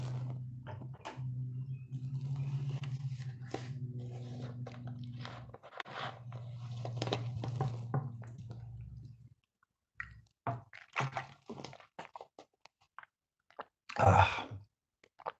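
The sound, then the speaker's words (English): Someone drinks water during an online seminar while waiting for typed questions: a run of wet gulps, swallows and small mouth clicks, at first over a steady low hum, then alone in near-silence, ending with one louder splashy burst. “So I'll give you a little time to type while I'm drinking some water.”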